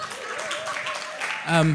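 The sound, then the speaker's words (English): An audience applauds in a steady wash of clapping, with voices rising over it and one louder voice near the end. “But, yeah, you can clap.”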